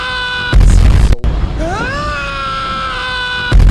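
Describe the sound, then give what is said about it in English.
A loud recorded scream, the show's 'mail scream' played to open the listener mail segment, swoops upward in pitch and then holds a long, strained note, framed by brief bursts of harsh noise at the start and end. “Hey, for old time's sake, let's get that mail scream out.”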